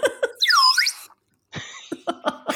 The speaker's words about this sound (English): Do you want to hear our buzzers first? Oh, yes, please.